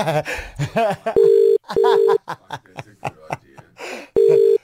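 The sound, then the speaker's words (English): A telephone rings in three loud, steady electronic tone bursts, two close together and one after a pause, while people talk between the rings. “Not our phones, eh?”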